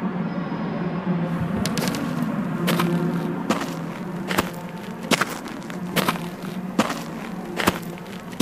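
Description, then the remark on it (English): Steady footsteps crunch across hard compacted earth in a Foley theatre at Pinewood and Shepperton Studios in London, about eight firm, evenly spaced steps with a gritty scuff to each, heard alone over a low, constant background hum. “This is hard compacted earth.”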